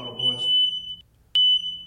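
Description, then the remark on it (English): A loud, piercing smoke alarm tone sounds in a house in two long beeps with a brief gap between them, shrill, while a voice talks underneath at the start. “This is when you broke your fucking house. Set off the fucking fire alarm.”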